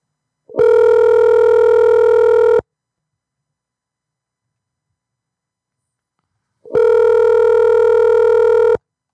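A phone line rings out: two long, steady buzzing ringback tones, each about two seconds, separated by a long silent pause. Loud and clear, with no one talking.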